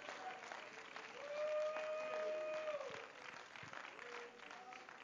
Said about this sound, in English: Well, you might as well go ahead and clap your hands to the Lord.